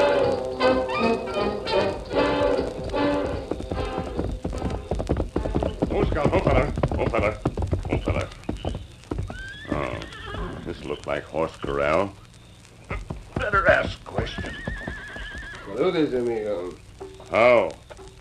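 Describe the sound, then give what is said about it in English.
The hooves of Scout, Tonto's horse, clip-clop in a steady, brisk rhythm, loud, with a couple of high, wavering whinnies breaking in toward the end. “Get him up, scout!”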